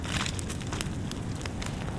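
A campfire roars steadily up close, its low rumble broken by frequent sharp crackles and pops scattered through the two seconds, with no voices.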